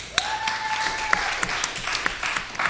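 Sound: round of applause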